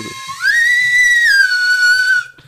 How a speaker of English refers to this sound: Trying to do a little like theremin on the slide whistle action. I think we just need to get a better slide whistle and like we could really do some fun stuff with that.